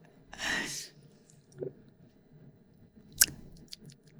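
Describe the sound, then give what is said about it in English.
Someone chews popcorn with a crunch: one longer rustling burst of chewing, then a soft bite and a sharp crackling snap, followed by faint clicking mouth sounds. No talking. “Oh, it's popcorn.”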